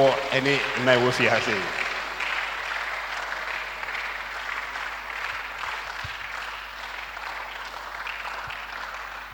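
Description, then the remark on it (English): A voice speaks briefly at the start, then an audience breaks into sustained applause for the women present, a dense, steady wash of many hands clapping that continues at an even level until the end. “Let us clap for the women in the house.”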